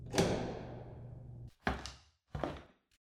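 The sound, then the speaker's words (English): A door bangs shut with a long ringing decay, followed by two more heavier knocks of a door being handled and latched, with no voices. “It's just through this door. Quick, let's go.”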